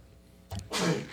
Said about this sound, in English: I tried to mute your mic so we wouldn't hear your sneeze, but I think we still heard it through the other mics.